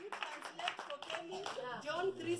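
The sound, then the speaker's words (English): An audience at Salt Life Church claps steadily for a couple of seconds, a dense patter of many hands, with raised voices and a few cheers riding over the applause. “Clap for him.”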